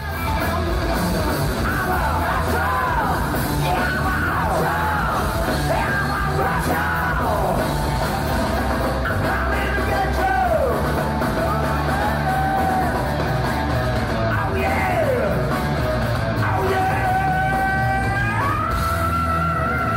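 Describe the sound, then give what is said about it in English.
A rock singer screams high, sustained notes with sliding pitch, performing on stage with a band at the O2 Arena in 2017, over a loud, dense live band and crowd noise, continuing throughout without a break. “By the way, he still has a decent scream.”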